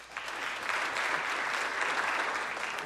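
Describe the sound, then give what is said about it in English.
A church audience claps together during a sermon, answering the question of who has ever been scuba diving or snorkeling: a sustained, dense burst of applause lasting a few seconds, steady in loudness with a bright, crackling texture and no speech over it. “How many of you, if you will clap, how many of you have ever been scuba diving or snorkeling? Will you clap?”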